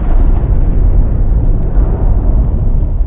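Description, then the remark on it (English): A loud, deep explosion from a movie trailer about the nuclear bomb rumbles continuously for a few seconds, heavy bass roar filling the whole stretch with no voices over it. “Yeah, it's about the nuclear bomb. There are explosions.”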